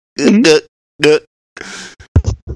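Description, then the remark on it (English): A voice imitates a child gulping juice: two short, pitched vocal noises, then a quick run of wet, breathy plops and clicks, fairly loud with no other talk. “Don't make those child gulping sounds. You know how every child drinks their juice?”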